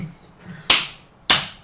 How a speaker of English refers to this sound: Would someone else like to clap? No, it has to be over here.